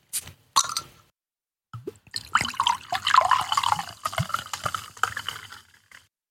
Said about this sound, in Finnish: Mutta kaadetaan ensin lasiin ne juomat.